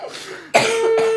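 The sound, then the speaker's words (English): A harsh coughing fit after laughing, with a softer breathy lead-in followed by two or three loud, raspy coughs in quick succession, no speech. “I'm so sorry, but when I laugh, my cough is 10 times worse.”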